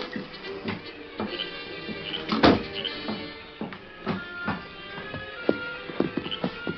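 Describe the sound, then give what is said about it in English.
Horse hooves clip-clop in a loose, uneven rhythm at moderate volume, the hard knocks repeating throughout over a steady tonal background hum. “Their horse is saddled and waiting, Sheriff.”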